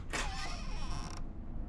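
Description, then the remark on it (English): A door that stood cracked open an inch creaks as it is pushed open by hand, one long, drawn-out groan, a strained, wavering squeal lasting about a second before cutting off, leaving a low rumbling background. “I put my hand on it and pushed it open.”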